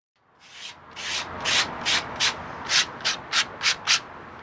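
Sandpaper rubbing back and forth by hand on a wooden dresser that is being sanded for repainting on a humid July day, about ten steady, rhythmic scratchy strokes, moderately loud, with no voices.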